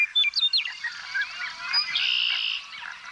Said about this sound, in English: Blackbirds and white-throated sparrows are abundant in the reeds surrounding this body of water. And if you listen closely, you'll hear the unusual pumping sound of the American bittern